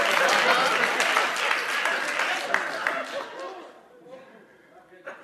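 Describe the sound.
An audience claps and applauds in a loud, dense burst that thins out and fades after a few seconds, with scattered voices murmuring underneath.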